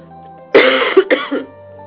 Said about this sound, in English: I'm going to cough.